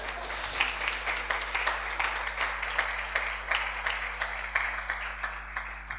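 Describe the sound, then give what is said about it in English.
An audience claps together in a steady, even rhythm, many hands striking at a brisk pace for several seconds, moderately loud with no voices over it. “In other congregations, like in the US and the like, they clap with them.”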